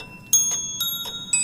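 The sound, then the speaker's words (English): Small bells chime in a quick, uneven sequence of three or four bright strikes, each leaving a clear, high ringing tone that lingers between hits. No one speaks. “That's pretty. The bells of hell go ting-a-ling-a-ling.”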